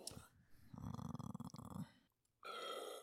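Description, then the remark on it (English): A quiet, muffled burp made away from the microphone, a low rumbling gulp lasting about a second, followed shortly by a brief breathy noise. “No, I burped away from the microphone.”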